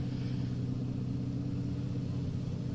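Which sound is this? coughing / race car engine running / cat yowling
race car engine running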